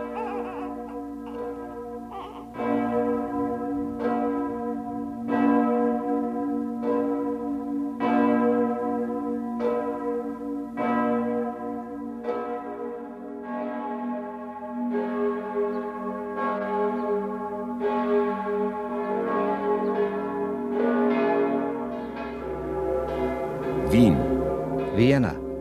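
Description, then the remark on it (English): The great bell of St. Stephen's, cast from cannons, tolls steadily, each deep strike ringing out with long, humming overtones that overlap into a sustained drone, loud, with a faint murmur near the end. “Great bell of St. Stephen's, cast from cannons.”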